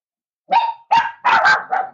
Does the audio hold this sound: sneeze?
no